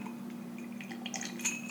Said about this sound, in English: You mix them, you pour them over some ice, you ching your glass together, and you have a rusty nail. Ready to ching, ready? There you go.